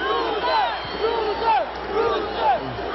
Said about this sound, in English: The fans began to yell, "Bruiser, Bruiser."